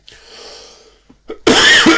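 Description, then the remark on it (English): A breathy intake, a brief pause, then a loud, harsh cough bursts out, with no one talking. “Because I needed a cough.”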